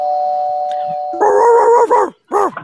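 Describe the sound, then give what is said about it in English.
A coyote howls: one long, steady, held note, then louder, higher wavering yips and cries, a short pause, and a final rising-and-falling howl. “Who's a good coyote? Yes, she is.”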